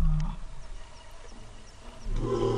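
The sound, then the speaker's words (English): A lion's roar played as a sound effect: a loud, deep rumbling growl that fades to a low grumble and then swells again near the end, with no one talking. “It's supposed to be a lion roaring.”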